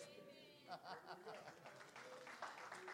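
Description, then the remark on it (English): Scattered, half-hearted applause from an audience during a pastor's sermon, a thin patter of clapping that never builds, mixed with murmuring voices and a voice speaking over it. “That's a pretty weak clap.”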